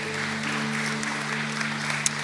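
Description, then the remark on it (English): Steady, dense applause of praise from a church audience during a worship service, a continuous wash of clapping with a sustained low musical drone humming underneath throughout. “Can we give a big shout of praise and applause?”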